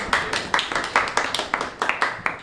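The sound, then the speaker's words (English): Audience applause after a talk on immigration history: a run of sharp, distinct claps at a quick, uneven pace, moderately loud, suggesting a modest crowd rather than a roaring one, with no talking over it. “doesn't do this for applause.”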